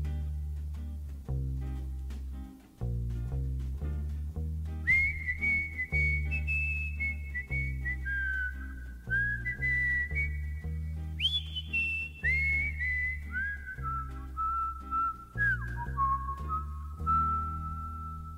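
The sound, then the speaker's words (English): Clear, skilled whistling carries a slow, wavering song melody with sustained, gliding notes over a steady instrumental accompaniment of bass and strummed chords, prominent throughout. “Also, I feel like anybody who can whistle is just showing off. Especially whistling that well.”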